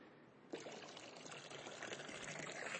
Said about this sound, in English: Water poured out.